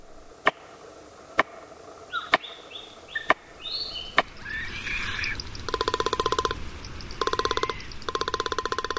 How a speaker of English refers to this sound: A tree banged with a stick held in a beak. Palm cockatoo.